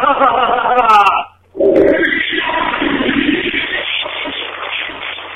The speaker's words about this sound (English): He flushed his toilet. Get it? He flushed his toilet.